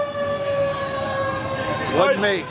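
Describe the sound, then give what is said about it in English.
A truck passes by with a loud, steady droning whine, its tones bending and wavering near the end as it goes by. Nobody speaks. “We're going to take one quick break here and let that truck go by.”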